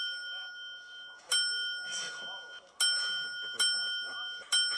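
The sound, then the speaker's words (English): A bellhop desk bell on the arm of a wheelchair, rung for yes or no answers, rings four times at uneven intervals, each bright ding ringing out and lingering before the next strike, fairly loud over a faint murmur of background voices. “And on that the arm bell. Of the chair was a bellhop bell.”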